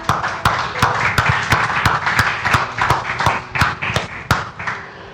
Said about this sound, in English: Amen, amen. Again, give God the best clap.